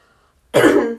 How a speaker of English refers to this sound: I've had something in my throat all day. You might hear her cough because of a tickle.